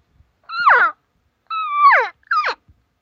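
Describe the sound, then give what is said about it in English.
An imitated cow mew sounds three times: nasal, high-pitched calls that slide downward, with the second drawn out longest and the last short and clipped. There is no talking. “Here's a standard cow mew, and now watch how I change the cadence of the tone.”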